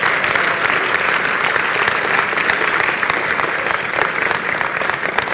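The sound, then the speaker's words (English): An audience claps for Jesus during a church service, steadily and densely for several seconds, a loud, continuous wash of many hands with no clear rhythm and no one speaking over it. “Clap for Jesus.”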